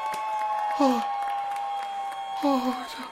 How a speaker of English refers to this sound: Oh! He did it! Everybody cheer!